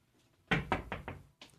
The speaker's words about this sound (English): knock on something wood that's next to you. And I'm trying to find some. Oh, I'm going to have to step away, actually, to knock on this wood. Hold on.